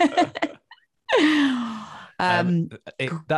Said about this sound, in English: I wasn't fighting back a yawn then either. I hope so. No, that was your cue to yawn.